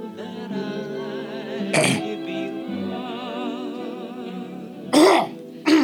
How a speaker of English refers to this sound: I couldn't get the cough button in time.